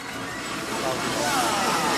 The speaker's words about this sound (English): I'd like to just mention and give our thanks to the many tractor drivers and crews here who are busy watering the engines. We've just got a couple here coming past.